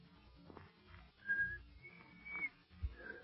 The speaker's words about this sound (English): Oh, shucks, I never could whistle.